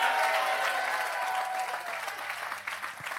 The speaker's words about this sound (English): If you believe it, come on, give him a 10-second hand clap.